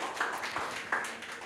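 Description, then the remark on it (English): A crowd claps in a soft, steady wash of applause, with a few sharper individual claps standing out above the dense patter. No voices are heard. The applause is a round of applause given to God. “So can we give God a round of applause because He deserved it.”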